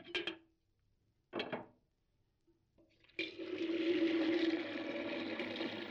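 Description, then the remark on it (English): Two sharp clinks of crockery being set down, followed by a steady rush of water running into a kettle, fairly loud, with no one speaking. “Come on, let's put the kettle on.”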